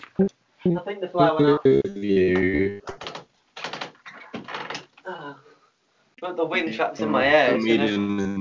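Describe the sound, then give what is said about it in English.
A window is pulled shut with a short series of mechanical clunks, scrapes and rattles in the middle, while a voice is heard before and after the handling. “I need to close my window again.”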